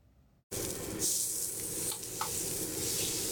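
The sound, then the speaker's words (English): Steady, loud sizzling of food frying on a hot griddle at a food truck in Charlotte, North Carolina, a dense crackling hiss that starts abruptly after a brief quiet moment, with occasional sharper pops and spits. “Sizzling, savory, sautéed, or smashed.”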